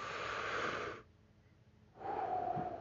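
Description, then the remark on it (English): Slow, deep breathing during meditation: a long airy breath of about a second, a quiet pause, then another long breath. No talking. “So what I do is I concentrate on my breathing.”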